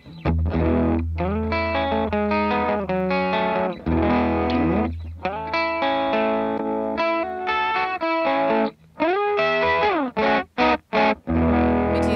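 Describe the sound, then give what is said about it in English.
A distorted electric guitar with humbucker pickups plays loud, thick chords and riffs, continuous, ending in a few sharp stops and stabs. “but they still have bite and punch, and yeah, it's a nice marriage.”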